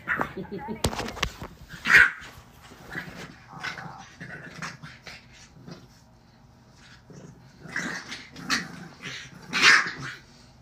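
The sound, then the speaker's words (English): A dog barks and growls playfully in short bursts while being played with, with louder yips standing out, while a person talks. “Playing with my fucking dog.”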